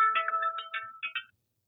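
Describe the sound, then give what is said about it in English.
A mobile phone ringtone plays a short, bright melodic phrase of electronic tones with steady notes and chirpy accents, fairly clear, cutting off abruptly after about a second. “I had to grab my phone.”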